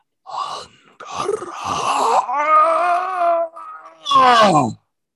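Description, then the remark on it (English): A human voice imitates a scream as a series of wavering, moaning wails, rising and holding in pitch, then a last cry that slides steeply downward and cuts off into silence. “And the scream fades.”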